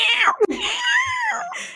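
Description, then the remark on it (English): A voice imitates a screaming fox with a shrill, wavering, high-pitched shriek that rises and falls, broken by a brief catch, then trails off in a raspy tail. Loud, with no other talk. “Not that there's any foxes in the coast, but I camped the first night at my granny's house, and there were foxes, screaming foxes.”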